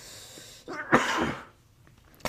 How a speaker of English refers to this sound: I'm gonna choke, bro. I'm starting to cough.